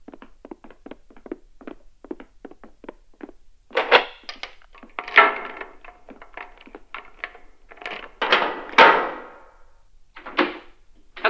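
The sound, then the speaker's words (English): A door that only opens from the inside, with no handle on the outside, is opened from the inside: a run of quick, light clicks and taps, then louder rattling clunks and a scraping latch sound, with no talking. “I'm gonna show you how to do the door.”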